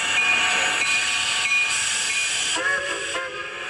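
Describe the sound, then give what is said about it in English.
A steam train hisses steadily at a fairly loud, constant level, with a thin high whistle tone sounding briefly several times and a fuller, wavering whistle near the end. No voices. “He heard the bells. He heard the whistle. A train coming from a distance.”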